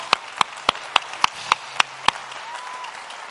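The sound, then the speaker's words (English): A crowd claps hands in praise to the Lord in a steady, quick rhythm, about eight sharp claps in unison, then stops, leaving a quiet murmur. “Come on, clap your hands to the Lord.”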